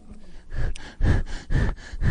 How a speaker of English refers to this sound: why are you breathing heavy, okay?